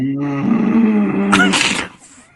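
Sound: cat growling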